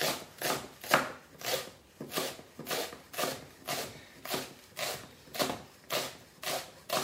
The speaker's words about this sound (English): So I'm chopping everything small enough for the carrots and the celery. I'm just cutting them to small cubes because this soup, I haven't told you, is not going to be blended.